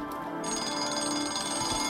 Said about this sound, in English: a sound that is desperately familiar to most of us, and of course it's the sound of the alarm clock. And what that truly ghastly, awful sound does is stop the single most important behavioural experience that we have, and that's sleep.